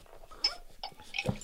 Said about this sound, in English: Well, I know what you and I are doing. We're going to pour a little bit of Johnny Walker now. I'm going to pour. I got another glass. Let me pull.